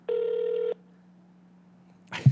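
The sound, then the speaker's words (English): A single steady ringing tone from a phone line sounds for about half a second, followed by a faint line hum and then a sudden clattering burst at the end. “I mean, unless he's turned his phone off.”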